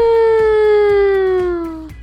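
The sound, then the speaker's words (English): A loud siren wails in a single sustained tone, its pitch sliding slowly downward for about two seconds before cutting off, with a faint rhythmic thumping underneath. “We've heard the siren twice.”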